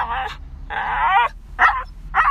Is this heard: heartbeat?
no